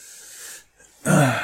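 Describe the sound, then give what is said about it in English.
A breathy yawn with a stretch: a long airy inhale, a brief pause, then a loud, groaning vocalized exhale. It sounds like a person performing an exaggerated yawn. “Yawn, stretch. Big day.”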